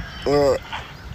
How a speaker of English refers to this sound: I think that's like a duck call. It looks like a big ass vape.